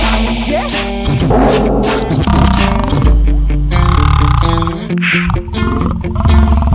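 A loud, rumbling lion roar fills the whole stretch, deep and gravelly, swelling and surging in long waves with dense, layered tones mixed beneath it and no talking.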